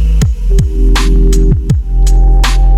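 Loud radio static interference: a steady electrical hum broken by repeated bursts of crackling hiss and low throbbing thumps, with no voices.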